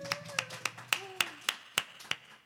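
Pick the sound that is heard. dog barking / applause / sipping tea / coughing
applause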